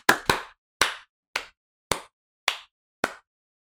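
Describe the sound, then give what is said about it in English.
A single person claps hands seven times at a steady, unhurried pace, each sharp clap crisp with a brief decay, the first two coming quickly together. “A lot of claps from you.”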